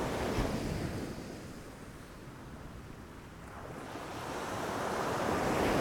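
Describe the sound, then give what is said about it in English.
Waves wash steadily onto a shore, a continuous rushing surf that swells and recedes, with some wind noise mixed in and no voices. “He listened, but all he could hear was the sound of the waves lapping on the shore.”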